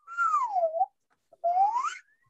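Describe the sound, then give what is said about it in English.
A person whistles two sliding tones, the first gliding downward and the second sweeping back upward after a short pause, mimicking a slide whistle. “No, that was just me whistling.”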